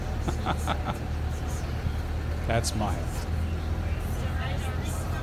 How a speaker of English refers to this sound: It actually plays. There is some sound if you want to turn it up a little bit. There are those motorcycles always zipping right in front of your vehicle.